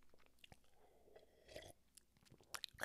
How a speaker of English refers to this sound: Excuse me. Water went down the wrong pipe.